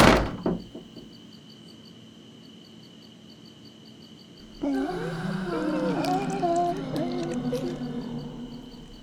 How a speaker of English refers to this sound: She went into the closest stall and pulled the bolt inside, collapsed onto the seat.